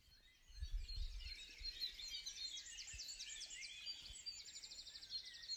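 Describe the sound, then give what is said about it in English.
Several birds sing and chirp outdoors in a back garden, overlapping high trills and rapid repeated notes, with a faint low rumble of background noise and no voices. “All of the birdsong you've heard in this episode was recorded by Gwen in her back garden.”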